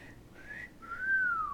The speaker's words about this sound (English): Did you get my whistle? Thank you. Yes, it sounded great.